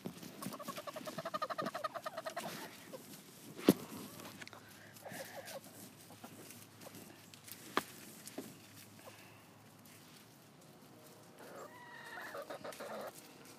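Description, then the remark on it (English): Chickens cluck and chatter in an irregular, busy stream, with a couple of sharper squawks standing out; no one speaks over them. “Hey, you're gonna reveal my hiding place, guys. Not you, the chickens.”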